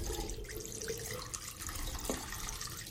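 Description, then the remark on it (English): Water runs steadily from a tap into a sink during one of three washes with water, a continuous hiss and splash with faint gurgles and a few drips, with no talking. “Like I say, I give it three washes with water.”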